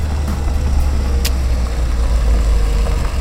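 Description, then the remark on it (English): A car engine rumbles steadily, a deep, continuous low drone that seems to ease off as the vehicle slows on a road, with no voices over it. “Let's slow up.”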